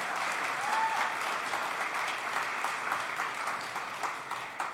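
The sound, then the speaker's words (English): A crowd applauds steadily, a dense wash of many hands clapping at an even, fairly loud level that holds for the whole stretch without any speech. “Can we give a round of applause for that?”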